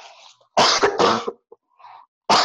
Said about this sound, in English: I'm going to have to cough again just a minute.